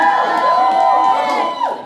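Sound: audience clapping and cheering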